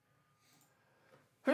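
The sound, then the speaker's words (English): A sneeze caused by allergies: a few seconds of near-silence with faint breathy rustling, then one sudden, loud, explosive burst right at the end. “We were sneezing a lot today, and not because of coronavirus.”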